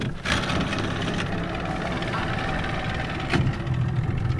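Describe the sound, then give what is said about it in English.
A small boat engine idles steadily at a landing in Grand Bayou Village, a continuous low rumbling drone with a couple of brief knocks and clunks over it, and no one speaking. “meets me at the landing in a small boat.”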